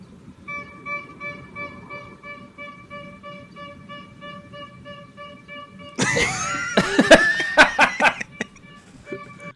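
A street corn vendor's horn blares in one long, steady, unbroken honk over faint background rumble, and partway through loud laughter and shrieking voices burst in on top of it.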